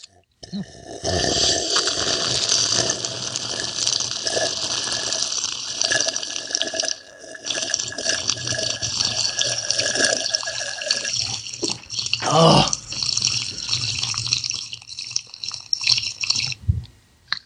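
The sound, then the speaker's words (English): Loud slurping of water in one long continuous pull during a slurping contest, wet and hissing, broken by a brief pause midway and a few gulping bursts near the end. “Was that one slurp?”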